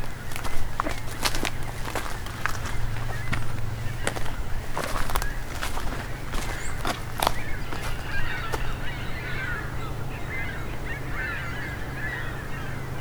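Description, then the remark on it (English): A flock of ring-billed gulls calling as they fly past, a steady stream of harsh, overlapping cries, with sharp crunching steps and a low constant rumble underneath. “A whole flock of ring-billed gulls going by.”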